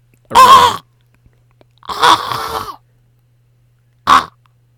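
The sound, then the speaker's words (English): Three harsh, raspy raven croaks, loud: a short call, a longer drawn-out one after a pause, then a brief final squawk, over a faint low hum. “A raven. Take a deep breath. Hold it. Raven.”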